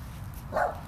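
A single short dog bark rings out midway through, moderately loud against a low steady rumble, with no voices.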